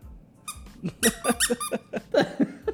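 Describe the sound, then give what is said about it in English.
A squeaky toy squeaks rapidly again and again, about eight or nine shrill, bright squeaks in quick uneven succession, loud, with no voices. “Oh, this thing squeaks, bro.”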